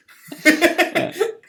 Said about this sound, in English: Excuse me. I don't want to hear your coughs